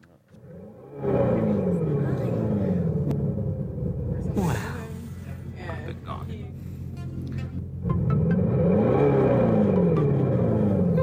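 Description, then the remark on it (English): An electric car's own motor noise, amplified rather than played from a speaker: a loud, steady engine-like roar with pitch sweeps like revving. It eases slightly midway, then swells back up and carries on to the end. “It's an amplification of a noise that an electric car, in this case, this electric car already makes.”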